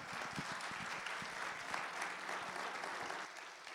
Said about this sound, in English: Let's give my wife a round of applause.